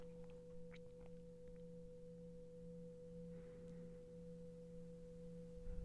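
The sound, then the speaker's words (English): A meditation bell gives off a soft, sustained ringing tone with a low hum beneath it, holding steady for several seconds with no speech. “And allow the sound of the bell to come in and drift out.”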